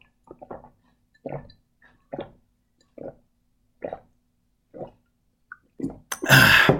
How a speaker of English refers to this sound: I hope you can hear that pretty well. I was just chugging a glass of water.